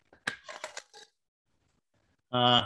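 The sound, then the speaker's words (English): Glass beads rattle in quick bursts inside a container, a bright clattering shake lasting about a second. Silence follows, then a short burst of a voice. “The glass beads one, to me, it was like higher pitched.”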